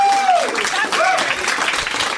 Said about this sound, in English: I'm able to accept your applause.